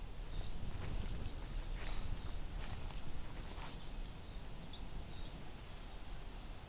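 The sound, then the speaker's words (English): Faint, thin, high-pitched seeping notes and short ticks from birds, including a flicker woodpecker, scattered irregularly over a steady low rumble and some scuffing noise along an old road allowance in the Grimsby area of the Niagara region. No one speaks. “As you can hear, there's a lot of seeping sounds and ticks and things like that.”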